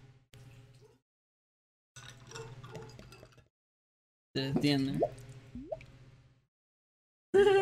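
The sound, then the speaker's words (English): Cool water pours from a new gurgle pot pitcher, kept in the fridge, in several short bursts to top off a glass, each breaking into bubbly gurgles and glugs as water backfills into the tail. The pours are clear, with quiet pauses between them. “It's a gurgle pot.”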